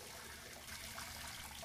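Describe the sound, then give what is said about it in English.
Tap water runs steadily into a bathtub, a continuous hissing rush with no breaks, moderately quiet and heard on its own without any voices. “And I think now that I'm in here, I can see we don't need nearly as much water as I thought.”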